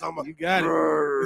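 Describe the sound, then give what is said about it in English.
A man's voice imitates an aggressive dog, letting out a short rough grunt and then a long, sustained, gravelly growl that holds steady and loud for about a second. “I want to sound like an aggressive dog.”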